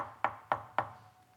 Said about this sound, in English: Within minutes, there was a knock.